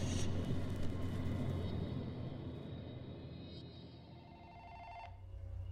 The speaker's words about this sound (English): I woke. Slowly. Painfully. The sound of a phone ringing.